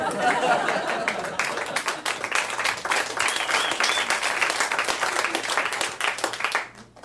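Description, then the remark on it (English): A crowd bursts into steady, loud applause for an audience member who challenged the speaker in a debate. Many hands clap densely for about seven seconds before it quickly dies away at the end. “Round of applause for you for challenging me and thinking you had a chance at winning.”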